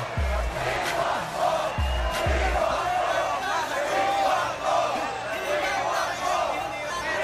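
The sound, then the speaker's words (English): A sold-out arena crowd at a Pelicans basketball game cheers wildly after a big three-point shot late in the game, a loud, unbroken roar of many voices, with a few deep booming thumps near the start. “The crowd, sold out crowd, is going wild.”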